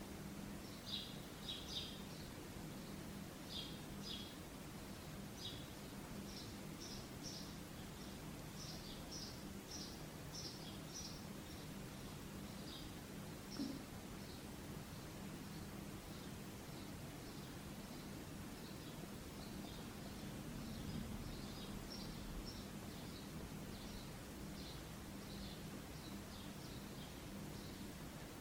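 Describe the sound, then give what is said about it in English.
Birds chirp and twitter in quick, repeated bursts throughout, fairly faint, over a constant soft hiss and low background rumble. “Just as we do not attempt to control the birdsong, we're not trying to control our sensations or thoughts in this moment.”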